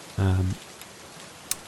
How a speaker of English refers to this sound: It started raining kind of once it got to kind of late morning, and it's kind of been steadily raining through the day since then. It wasn't so much first thing in the morning.